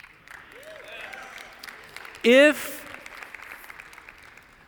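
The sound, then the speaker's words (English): Steady clapping from a large church audience at moderate level, with a brief loud voice cutting through partway and a speaker starting to talk over the applause. “I try to wait for you to clap, but then I get excited and I have to keep talking, so I'm going to over-talk your clap sometimes.”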